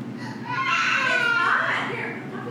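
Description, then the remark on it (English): A young boy yells and wails, a loud, high, strained vocal cry rising and bending in pitch for a couple of seconds, with a faint murmur of other sound underneath. “Hey, calm down, man. People are hearing you. Relax. Relax. What is he yelling at?”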